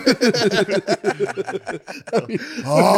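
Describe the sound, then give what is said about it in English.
Quick, choppy vocal sounds like chatter or chuckling, then a loud, strained, rasping vocal snore at the very end as a voice mimics a man's heavy sleep-apnea snoring. “You can hear in Phil's apnea from the other room. You hear him just like, ah.”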